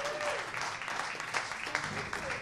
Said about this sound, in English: Give Monkey Brains a nice round of applause, too.